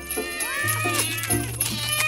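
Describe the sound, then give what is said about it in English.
Several cats meow and yowl over one another in quick succession, a loud, overlapping chorus of rising and falling cries, with a steady low hum underneath. “so I just texted my sleigh cats. They should be here to pick us up right about now.”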